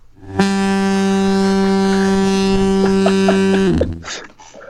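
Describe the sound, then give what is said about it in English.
A single long, loud foghorn blast holds a deep, steady tone for over three seconds, then cuts off, leaving brief faint rustling noise behind it. “And then we got one of my personal favorites, the foghorn.”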